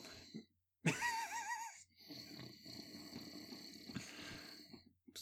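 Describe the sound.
A person imitates a cat purring, opening with a short warbling vocal trill and then a steady, rough, rumbling throaty purr that continues for several seconds, moderately loud.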